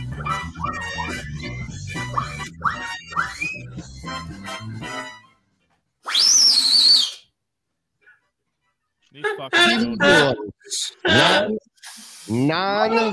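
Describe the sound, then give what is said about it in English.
Loud, breathy whistle blast lasting about a second, with a high shrill tone over rushing air. It comes after a stretch of talking, and more voices follow. “The fucking whistle, dude. It's really annoying and it's starting to piss me off.”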